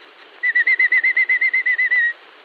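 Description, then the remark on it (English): A man imitates a robin's daytime chirping with a quick, even run of about a dozen bright whistled chirps, on a thin, band-limited old recording. “The robin chirps through the day this way.”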